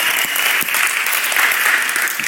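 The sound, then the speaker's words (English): An audience claps steadily during a pastor's sermon, a dense, even wash of many hands with no voices over it, loud and sustained for the whole couple of seconds. “If you're going to clap, might as well do it.”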